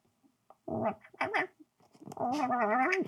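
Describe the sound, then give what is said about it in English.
A cat chirps and chatters, starting with a few short, clipped trills and swelling into a longer, wavering, warbling call. “But I hear it's like if a cat sees a fly on the windowsill.”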